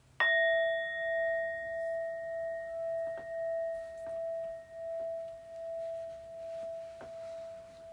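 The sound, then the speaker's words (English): A single meditation bell is struck once to begin mindful movements, its clear tone sustaining and slowly fading with a gentle wavering shimmer over several seconds. “Listening to the bells to begin our mindful movements.”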